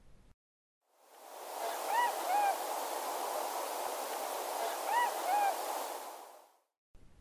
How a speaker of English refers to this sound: With them, listen for the plaintive calls of the tundra swans.